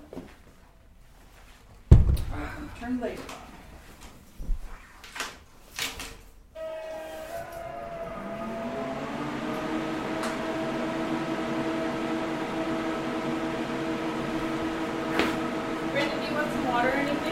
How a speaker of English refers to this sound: Turn the laser on.